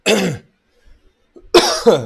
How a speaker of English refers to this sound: I apologize, but you're going to hear some coughing. Can't talk for too long without either coughing or my throat drying out or whatever.